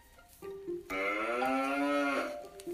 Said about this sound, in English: He thought the cows made beautiful music. He had never heard anything so soft and low.